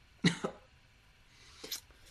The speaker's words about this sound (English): Sorry, that was a COVID cough.